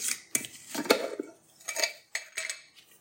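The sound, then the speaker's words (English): A measuring spoon taps and scrapes against a bowl while adding a teaspoon of sweet rice flour to oat flour for a gluten-free mix, a series of about six short, bright metallic clinks at an uneven pace, with no one talking. “We're gonna add a teaspoon of sweet rice flour to give it a little extra chew.”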